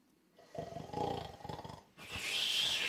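A loud, deep snore from a sleeping giant: a rough, rattling inhale lasting over a second, then a long, breathy hissing exhale, alone with no talking.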